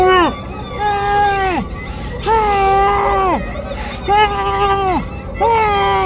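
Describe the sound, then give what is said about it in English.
A woman tied with ropes yells through a sock taped over her mouth, throwing her body against the ropes: four long, strained cries, each holding a pitch then sagging downward, loud with short breaths between and no other sounds. “She threw her body against the ropes and yelled into the sock taped against her mouth.”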